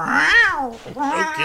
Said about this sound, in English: Ooh. Meow.